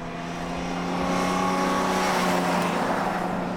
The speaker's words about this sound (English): That same car's been behind us for a while.